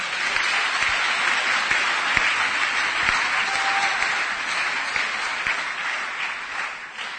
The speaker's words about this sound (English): Clap your hands for Jesus, someone.